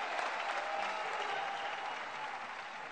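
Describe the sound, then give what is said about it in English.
An audience claps steadily, a dense wash of many hands at a fairly even, moderate loudness that holds for a few seconds without letting up. “You can clap better than that one.”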